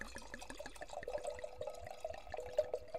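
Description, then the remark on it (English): Red wine, made in 2021, pours into a glass with a quick series of gurgling glugs whose tone climbs steadily as the glass fills. No one speaks. “Now, let's pour it up.”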